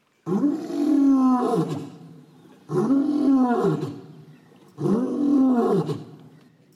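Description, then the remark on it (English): A lion roars three times in a steady rhythm, each deep, rumbling roar rising and trailing off before the next. The roars are loud, with no talking. “He roars no more.”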